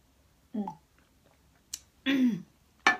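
Someone sips water: a short wet slurp, a click, a longer gulping swallow, then a quick breathy exhale. The sounds are moderately loud against a quiet background, with no talking.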